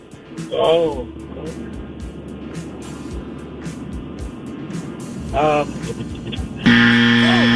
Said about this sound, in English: There's the 7 second buzzer. Creeps up on you rather quickly.